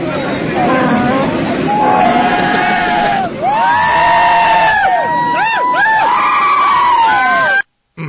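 A flock of sheep bleats loudly and continuously as a played sound effect, many wavering, overlapping calls piling on one another for several seconds before cutting off abruptly.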